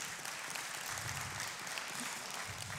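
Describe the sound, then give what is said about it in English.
An audience claps steadily, a dense crackle of many hands that holds at an even level for about three seconds without breaking into distinct beats. “Yeah, clap all you want.”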